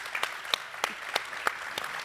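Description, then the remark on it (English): An audience applauds steadily, a dense wash of clapping with sharper individual claps popping out at a fairly regular pace, holding an even, moderate loudness throughout with no voices. “You're going to want to do this a lot while they're talking, so maybe I'll just say, hold your applause to the end, and then let it come, because there's going to be a few of those moments along the way.”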